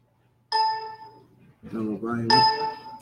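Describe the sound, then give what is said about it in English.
A phone rings twice with a bright, sustained electronic tone, fairly loud, as a call is placed to a Dodge Ram 3500 truck owner, and a man's voice speaks briefly in the gap between the rings. “Is it ringing? It's ringing.”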